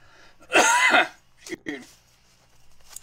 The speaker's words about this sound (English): It's coughing.